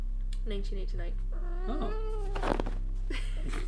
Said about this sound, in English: Oh. Sorry, our cat again has decided to join us.